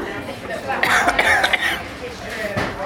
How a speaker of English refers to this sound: has taken off his glasses, is bright red in the face, and currently coughing.